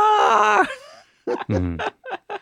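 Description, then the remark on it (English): A person imitates a banshee's howl with a wavering, strained vocal wail lasting over half a second, followed by a few short breathy vocal bursts like laughter. “It's supposed to be a screech, but unfortunately I can only go as high as a howl.”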